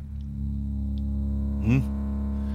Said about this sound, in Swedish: Och sen kommer det in då, efter ett tag här så kommer det in lite bassvällar och sånt där. Det ni hör här, de låter så här.